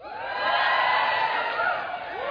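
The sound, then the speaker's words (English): A crowd of women in an audience screams and cheers loudly and continuously, high-pitched whoops and shrieks overlapping in a sustained burst of excitement that swells and then eases slightly. “Well, the women are screaming, the men are leaving.”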